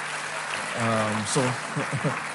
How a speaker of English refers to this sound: I thought if you're clapping, clap now.